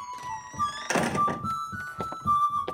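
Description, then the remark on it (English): A series of dull, solid knocks on a wooden door, signalling the entry of Lieutenant Redmond Herring, about eight in a loose steady rhythm, with a sustained high tonal drone running underneath. “That knock on the door signals the preamble to the entry of Lieutenant Redmond Herring, one of the least liked human beings in Commander Pooley's world.”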